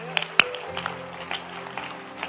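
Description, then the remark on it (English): A church audience clapping hands to celebrate a pastor, in scattered, irregular claps, one sharp clap standing out near the start, the rest softer against a low steady hum. “Are you clapping your hands?”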